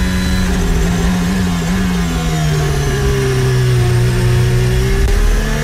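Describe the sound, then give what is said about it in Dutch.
Formula 1 cars roar loudly off the line at a race start, a dense, continuous high-revving engine whine with pitch sagging slightly then climbing again, filling the whole stretch with no voices. “Hier is een start.”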